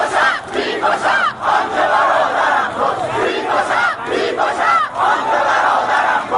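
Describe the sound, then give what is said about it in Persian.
A terrified crowd of protesters fleeing gunfire amid tear gas screams continuously, many voices overlapping in shrill, wavering cries that rise and fall in pitch. The chaotic yelling stays loud throughout with no clear speech. “خون کف سیمان جاری میشود و مردم وحشت زده فریاد میکشند.”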